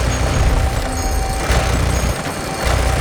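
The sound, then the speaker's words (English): A video game Gatling gun fires in a sustained, dense roar of rapid shots, loud and steady for the whole stretch, with a heavy low rumble and a couple of sharper bursts. “I'm on the Gatling gun Outlaw has.”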